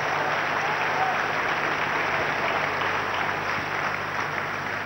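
A church audience claps their hands for the Lord Jesus during a morning service, a steady, dense wash of applause that stays loud and even throughout, with faint crowd murmur underneath.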